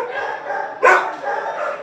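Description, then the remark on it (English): Many dogs bark at once in a dense, continuous, echoing chorus at the Manukau Animal Shelter in Auckland, with one louder, sharper outburst standing out briefly near the middle. “57% of impounded dogs across Auckland come here to the Manukau Animal Shelter, as it's the biggest facility”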